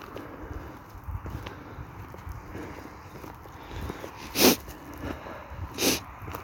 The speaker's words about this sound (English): Sorry about the sniffles.